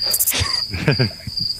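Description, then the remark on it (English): A cricket chirping sound effect: a steady, high-pitched chirp trills almost continuously, with a short break in the middle, over faint low background sounds. “I'm going to put a cricket sound effect in here too.”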